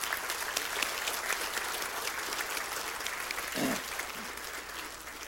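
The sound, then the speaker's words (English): A church audience applauds steadily for everyone who had a part in the Christmas play, a dense wash of many hands clapping at an even level throughout, with a brief low murmur of voices partway through. “Let's give all of them applause again.”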